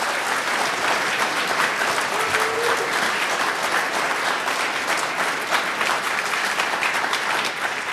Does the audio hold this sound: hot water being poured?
no